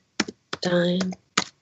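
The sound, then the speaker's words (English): A few slow, separate taps on a computer keyboard, fairly crisp, with a brief voiced sound in between the keystrokes. Someone typing with one finger, looking up the word "dynamite" on a word website. “Sorry, typing with one finger.”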